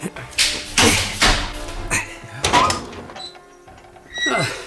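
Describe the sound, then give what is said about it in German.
A series of sharp metallic clunks and scrapes as the bolt of a chamber door, locked from the outside, slides back, followed by the door creaking open, fairly loud with a faint hum beneath. “Tim, die Tür da. Sie ist von außen verriegelt. Ja, das haben wir gleich.”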